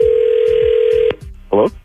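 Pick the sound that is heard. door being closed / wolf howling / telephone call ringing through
telephone call ringing through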